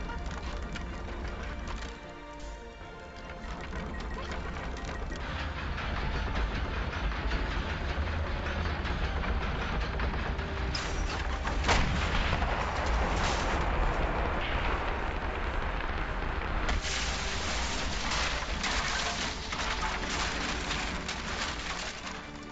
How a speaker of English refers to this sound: And the whole ship just, like, you feel it just go forward and then back as this huge explosion. And you guys all just hear a huge explosion, and the whole entire place rumbles for a moment from just, like, the sound wave of something.